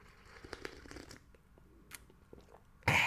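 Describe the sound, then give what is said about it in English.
Mouth and mug sounds: a scatter of small clicks and crackles, then a sudden loud, breathy slurp at the very end as someone takes a sip of instant coffee. “Gonna grab a quick sip of coffee, folks.”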